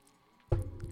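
After half a second of near silence, a sudden wet slurp begins, a loud sip of blueberry muffin coffee that carries on to the end with a muffled, squishy texture.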